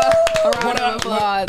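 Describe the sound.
Hands clap in a quick, steady rhythm, sharp slaps repeating several times a second, while a voice with a sustained tone carries on over the clapping.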